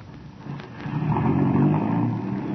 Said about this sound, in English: That car, it sounded like... Oh, but it couldn't be.